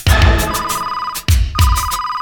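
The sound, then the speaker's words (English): A secret gadget phone rings loudly in two electronic bursts, each a warbling tone with a bright steady pitch, separated by a brief break. “secret gadget phone.”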